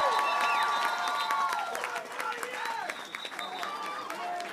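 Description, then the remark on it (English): A crowd claps steadily and densely for several seconds, with scattered cheers and whoops rising above the applause, fairly loud and continuous from start to finish, applauding campaign supporters at a Buffalo political campaign event. “Let's give all of them a round of applause.”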